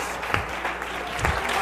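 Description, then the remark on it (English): A crowd claps hands together in praise to the Lord in a steady, dense wash of applause, with a few sharper claps standing out. The clapping fills the whole short moment at moderate loudness. “Oh, come on, clap your hands unto the Lord.”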